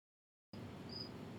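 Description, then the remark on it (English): A cricket gives a thin, high chirp, one short burst with a faint blip before it, over a steady low room rumble after a moment of silence. “Welcome to the Whitetail Legacy Podcast, coming in your ear holes with crickets in the background.”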